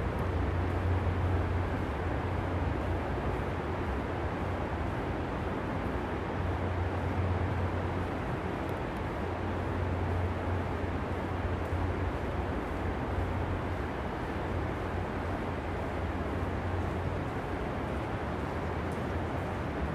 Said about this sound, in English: I just wanted to share the rain with you. It sounds really great. Hopefully you can hear it on the recording.